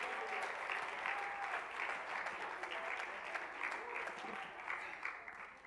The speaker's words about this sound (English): Oh, let's clap our hands and praise Him again this morning.